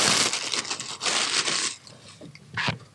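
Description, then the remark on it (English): Loud, bright plastic crinkling and rustling as a small tank top is pulled out of a bag, with a sustained burst of crackle, a quieter pause, then a short final crinkle. “Let's take this one out the bag.”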